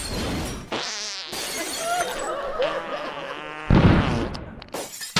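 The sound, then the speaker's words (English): A small drone whines with a high, insect-like buzz, its pitch wavering as it goes out of range and dive-bombs a house, then slams into the house's bathroom window with a loud crash and shattering glass. “Put it this way, that was the plan, until the drone apparently went out of range and dive-bombed his house. And crashed.”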